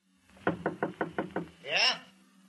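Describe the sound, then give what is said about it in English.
Six quick, evenly spaced knocks rap on a wooden hotel room door, crisp, followed right after by a short voice calling out. “I went down the hall and knocked at the”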